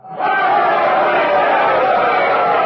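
A large crowd cheers and roars for the queen after her speech, a loud, sustained wall of many voices that swells quickly and holds steady without a break.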